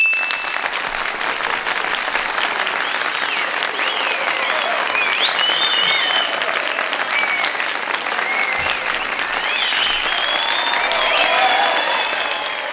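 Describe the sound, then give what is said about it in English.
A crowd claps steadily for about thirteen seconds, a dense, sustained round of applause at even loudness with a few faint whistles or cheers mixed in, and no speech over it. “Just want to give myself an extra round of applause there.”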